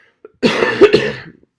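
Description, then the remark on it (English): A wet, phlegmy cough bursts out, a harsh, rattling fit of about a second with a couple of stronger jolts in the middle, then trails off; a moist cough that has lasted over a month, since February. No one speaks. “So yes, I've had a cough since February for over a month now. It is a moist cough, which is super fun whenever you have that phlegm coming out.”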